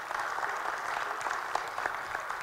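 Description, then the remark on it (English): Sustained applause from a church audience giving a hand to those who just took part, a dense steady patter of many hands clapping at an even level for the whole stretch, with no voices standing out above it. “Can we give them a hand?”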